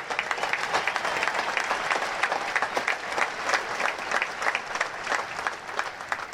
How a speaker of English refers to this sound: Lead, fight, win. That's right. You can applaud that.